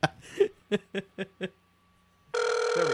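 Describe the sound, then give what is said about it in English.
A few short, quick bursts of chuckling fade out, then after a brief pause a loud, steady telephone ringback tone starts and holds to the end, as on an outgoing call. “She's not going to pick up the phone now.”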